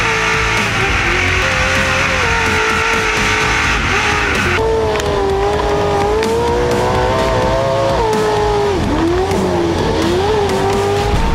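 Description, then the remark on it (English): A loud car engine drones continuously through a throaty Borla performance exhaust, its pitch rising and falling as the revs swell and dip, unbroken with no talking. “All right, well, I got one more for you, and this is the Borla clip I played earlier. I'm going to play it right now, and then you tell me what it is.”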